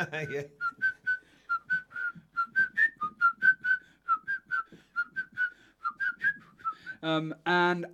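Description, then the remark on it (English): A bright whistled melody from a song plays as a steady string of short, bouncy notes, clear, with a brief voice at the start and a loud vocal burst at the end. “It had me when as soon as the whistling turns up.”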